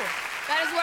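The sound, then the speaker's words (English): Women cheer with high, sustained "woo" calls that rise in pitch, several voices overlapping above a steady wash of crowd noise and applause. “It's the girl cheer.”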